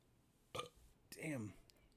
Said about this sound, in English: This Revelation Stout gives you the beer burps like a son of a bitch. I can tell you that right fucking now. Oh, man. I feel them coming up.